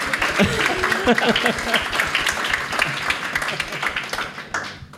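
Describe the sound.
A steady burst of applause, many hands clapping quickly and densely for about five seconds, with a few voices cheering briefly at the start before the clapping thins out at the end.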